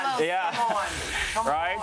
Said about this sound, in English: But we like to toast our curry to get that flavor going. And then we add our meats that's been... Ooh, so you hear that sizzle? It. That's what we want.